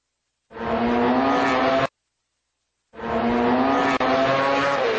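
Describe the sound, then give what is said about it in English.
Two loud bursts of a MotoGP road racing motorcycle engine, about 240 horsepower and reaching 200 miles per hour, screaming at high revs, each a couple of seconds long with a short silent gap between, like bikes tearing past. “240 horsepower, 200 miles per hour, two wheels with no roll cage. This is the world of motorcycle road racing, the pinnacle of motorsport.”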